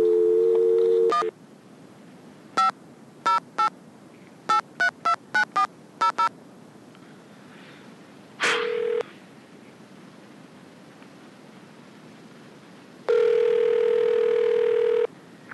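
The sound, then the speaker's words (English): A steady telephone dial tone cuts off, followed by a quick run of about ten touch-tone dialing beeps, then a short tone and a longer steady tone, as someone phones a friend of their father; all clear with no voices. “So that's why it starts out with the very first phone call I made to a friend of my father's.”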